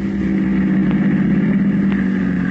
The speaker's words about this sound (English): Their taxi is just pulling up in front of the door. This is it, Combo Cafe.